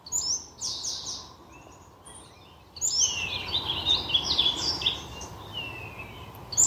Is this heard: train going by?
no